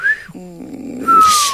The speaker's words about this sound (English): You can whistle?